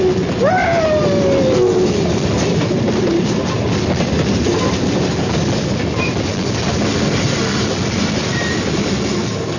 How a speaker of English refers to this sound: What a train! What a ride! What an engineer!